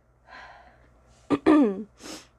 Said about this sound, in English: Are you about to sneeze? No, I was yawning.